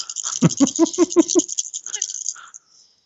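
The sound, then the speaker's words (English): Five dice, rolled for a pistols check in a game, clatter and tumble across a hard surface: a rapid burst of sharp clicks and knocks, then lighter scattered rattles as they settle and stop after about two and a half seconds. “Yay, five dice, people!”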